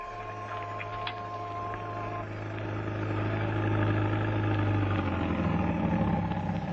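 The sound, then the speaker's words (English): A taxi engine hums steadily and fairly loudly throughout in New York, a continuous low drone with faint tonal whines and rattles, heard from inside the moving taxi as it drives back to the dock. No one speaks. “You had to take a taxi. My taxi.”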